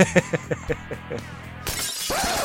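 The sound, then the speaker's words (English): A bar window's glass shatters with a loud, bright crash that keeps crackling and tinkling to the end, preceded by a run of evenly spaced, fading thuds. “Hey, is that the broken glass from the theme song? They knew about that. In season one. It's the bar window.”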